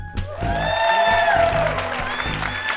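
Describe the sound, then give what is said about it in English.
A live audience in Toronto claps and cheers steadily for a few seconds as chef Maddie Matheson makes his way on stage, the applause blending with upbeat music that carries a thumping low beat and a sustained melodic line. “And as he made his way on stage, the crowd showed him some love.”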